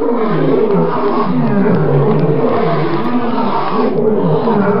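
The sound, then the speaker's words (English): Loud, continuous lion-like roaring of a hundred-headed monster fills the whole stretch, deep rumbling growls overlapping one another as if several great beasts roar at once, relentless with no pauses. “Red slime oozed from evil eyes, and lava and hot stone poured from his gaping mouths, hissing like 100 snakes and roaring like 100 lions.”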